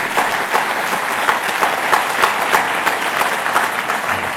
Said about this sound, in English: Long back, God told, I know how I made you. Clap your hands and rejoice and be happy.